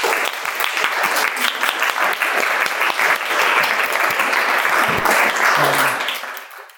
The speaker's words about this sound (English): Please join with me in applauding the artists.